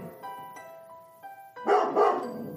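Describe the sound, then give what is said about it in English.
A dog at a door whines in drawn-out, high tones, then lets out two loud, rough barks, with no one talking. “I thought to myself, really, like, why doesn't he just open the door and then realize he's a dog and dogs can't do that?”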